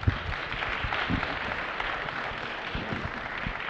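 An audience applauds participants for their participation before a conversation about human rights, a dense wash of many hands clapping at once with sharp individual claps scattered through it, holding fairly even loudness for the whole few seconds without any voices.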